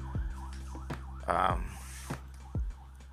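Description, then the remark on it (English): An ambulance siren wails in a steady, repeating rise-and-fall pattern at moderate volume, with a low rumble underneath and brief bursts of other noise. “I don't know if you got to hear that ambulance.”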